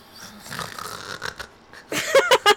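Close, raspy snoring, starting as soft rattling breaths and then swelling into a few loud, rhythmic snorts near the end, with no talking over it.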